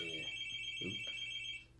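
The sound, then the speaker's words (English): A telephone rings with a steady, high electronic tone that holds for over a second and a half, then cuts off, with a brief low muffled thump partway through. “You put the phone for me, Ross. It's still one in the corner.”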